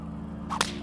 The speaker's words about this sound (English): On the pilgrim's right, he can see a new batch of demonic guards, armed with whips, who lash at the naked sinners.